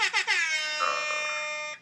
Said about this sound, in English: I didn't realize not hitting the circle on the rap air horn thing would set it off, because I was gonna say not to do my own hair, not to do my own horn, but.